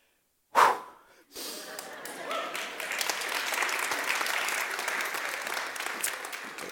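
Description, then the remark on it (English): An audience at a church service breaks into sustained applause after a scripture reading, beginning with a sharp burst and then settling into steady, dense clapping from many hands that continues without fading. “The first service didn't clap for me, so thank you for that.”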